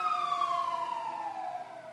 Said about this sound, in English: Let's take a pause for this fire truck, because we are sitting outside.